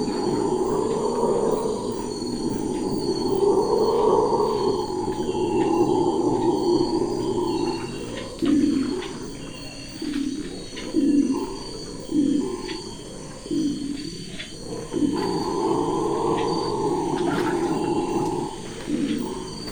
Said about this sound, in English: And then a real surprise, some huffing sounds ahead. We quickly round a bend and are greeted by a troop of red howler monkeys sounding off at first light. What an extraordinary voice, a signature sound of the Amazon rainforest.